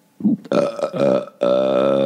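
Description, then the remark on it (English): A loud, drawn-out belch with a rough, voiced rasp, broken by a brief pause before a second long burp rumbles on, prominent with no talking. “We've been doing that a lot in front of our son Ellis belching and it's fun to burp at him”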